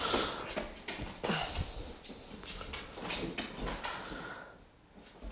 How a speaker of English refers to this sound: He just wants to attack me. He's probably going to bark at me pretty soon here. Oh, right on cue.